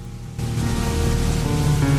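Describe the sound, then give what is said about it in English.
Steady rain hisses in after a brief quieter moment, a dense, even wash of noise that stays constant to the end, with a faint low hum beneath it and no voices. “All I hear is rain.”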